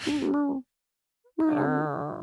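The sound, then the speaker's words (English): A baby killer whale calf gives two loud, whiny crying calls, each wavering and drawn out, separated by a brief silence. No one speaks. “That just sounds like a puppy crying.”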